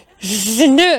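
A single voiced sneeze: a breathy, rising intake followed by a louder, sharper burst that trails off quickly, with no other sounds around it.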